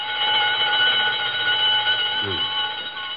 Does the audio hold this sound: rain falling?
no